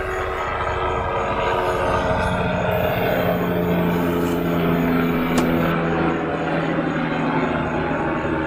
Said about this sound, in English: Somebody needs their life saved. Either that or the helicopter is checking out traffic.